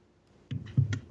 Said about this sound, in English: I've already knocked my microphone over, so we're technically perfect. We'll have rustling paper and giant mic noise, and okay, cool.